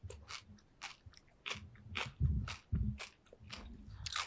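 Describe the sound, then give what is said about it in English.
Crisp crunching of food being bitten and chewed, a steady series of sharp crackly bursts about every half second with a few heavier, thumpier bites in the middle, no talking. “Obviously, we'll cut the crunching, the chewing.”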